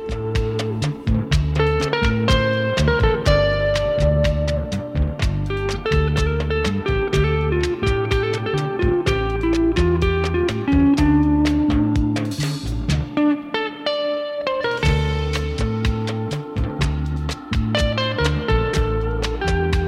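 A rock song played on Radio Brave: loud and dense throughout, with driving drums, heavy distorted guitars and a steady beat, briefly thinning out to a near-pause before the full band crashes back in.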